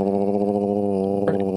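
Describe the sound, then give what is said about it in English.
A dog growls in one low, continuous rumble, fairly loud, holding steady for about a second and a half with no one talking over it. “I thought you were just growling at me for a second.”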